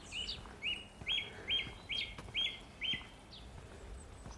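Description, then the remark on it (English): A dunnock sings in the distance outdoors at a remote spot by a restored cottage, with a run of five or six evenly spaced, bright repeated notes standing out over a soft, quiet background. “It's remote. And the dunnock. Very remote.”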